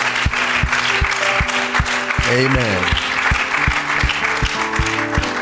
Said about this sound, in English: Would you give them all a hand clap just to honor them tonight?